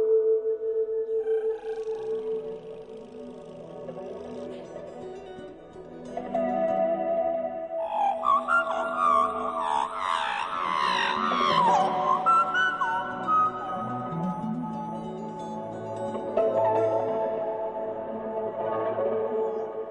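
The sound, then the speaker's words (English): A person whistles and warbles an imitation of magpie song: a run of fluting, gurgling notes that slide and jump in pitch, with rapid trills and a few squeaky high calls, steady and moderately loud. “So how did you come to sing like a magpie?”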